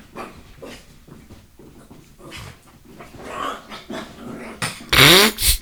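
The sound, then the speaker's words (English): A small dog growls low and steadily, then breaks into a couple of loud, sharp, yappy barks near the end. No one speaks. “I was trying to get them to go on the other side, but I couldn't catch your little dog.”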